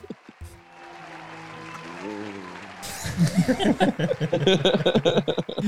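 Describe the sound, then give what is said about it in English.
A canned applause sound effect played from an applause button: a few seconds of steady, hum-like tones give way to a loud burst of crowd clapping mixed with cheering voices that continues to the end. “It's very the applause button. Oh, yeah. Yeah. Where is that? Yeah. Yeah. Throw that applause.”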